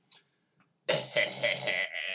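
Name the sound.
burp into the microphone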